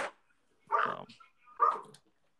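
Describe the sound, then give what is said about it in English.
Two sharp dog barks ring out about a second apart, loud, with a brief fading yip at the start and quiet in between; dogs barking at a squirrel in the backyard. “Yeah, I'm sorry, my dogs were going nuts, but it's okay.”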